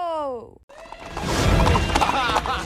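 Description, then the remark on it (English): A horse gives one loud, descending whinny at the start of a chariot race, which cuts off abruptly into a dense, rumbling wash of noise that continues to the end. “Chariot racers, start your horses!”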